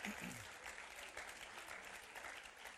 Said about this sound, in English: Why don't you give your senior pastor a round of applause?